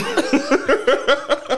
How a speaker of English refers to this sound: Clear my throat.